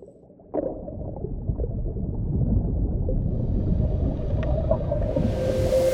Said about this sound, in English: A study by Susan Parks at Syracuse University compared recordings of North Atlantic right whale calls from the 2000s